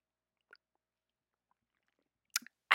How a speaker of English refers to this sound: And actually, I am parched, so I'm going to take a quick sip of water here.